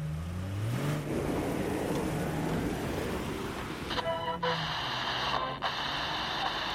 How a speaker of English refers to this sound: Once at the airport, I rented a car and embarked on an even longer ride.